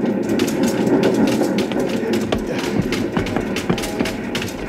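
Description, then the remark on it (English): A steady rumble of a small train with a wood-loaded tender in motion, with clanks and irregular knocking jolts as the wheels roll over rough, uneven rails, continuous throughout. “The little train jumping, rocking over the uneven rails.”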